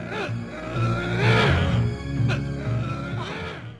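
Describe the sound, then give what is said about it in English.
A person playing a zombie behind the wheel of a truck imitates the truck engine revving: a loud, continuous rumbling drone with rising and falling pitch sustained for several seconds. “I literally laughed out so loud that I thought that I was going to wake them up when she looks outside and she sees this zombie behind the wheel of the truck making the engine noises.”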